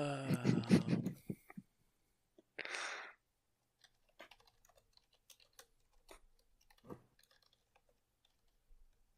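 About a thousand dice being rolled clatter and tick irregularly, fairly faint, a scatter of small sharp clicks over several seconds, preceded by a brief hum-like voice sound and a short rushing burst.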